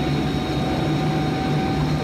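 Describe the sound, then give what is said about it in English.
A diving plane's engine roars loudly and steadily, a dense droning rush with a constant whine on top, holding the same pitch for the whole couple of seconds with no voices. “The enemy plane didn't follow him. Oh, that one did. And they're going down.”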